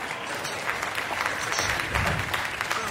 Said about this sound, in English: A thunderous roar from the baronet crowd as they leapt to their feet, cheering and hugging and high-fiving as if at a major league sporting event.